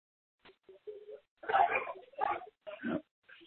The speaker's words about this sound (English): Here goes a little dog.